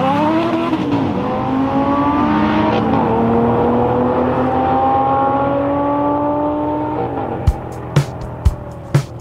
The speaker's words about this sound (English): The car I was driving? The one, the only Bugatti Veyron.